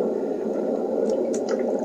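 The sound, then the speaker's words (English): Steady rushing water, like a waterfall, pours continuously at a fairly loud level, with a few brief splashy, dripping accents near the end and no voices. “A waterfall.”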